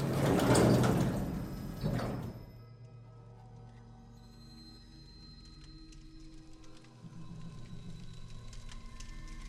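A sliding elevator door rumbles shut over about two seconds, then fades into a low mechanical hum with faint whirring and creaks that linger afterward. No one speaks.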